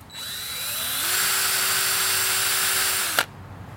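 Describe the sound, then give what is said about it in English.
A power drill spins up and grinds steadily, drilling holes into a hard red oak log, its motor whine holding a strained, even pitch for about three seconds before cutting off with a click. “This log is really hard. Yeah. I swear I know how to use a drill.”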